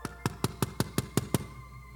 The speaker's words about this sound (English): And a knock comes at her door. E ela vem e bate na porta.